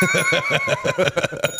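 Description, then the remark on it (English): A bright bell rings in a sustained, shimmering tone over a steady, rhythmic low thumping, fairly loud, with no voices present. “Hashtag sell the bell.”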